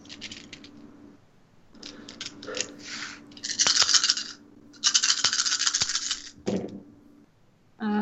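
Dice rattle and clatter across a hard tabletop in several bursts during a tabletop game damage roll. A sustained clicking tumble is followed by a few sharp knocks as they settle, over a faint steady hum.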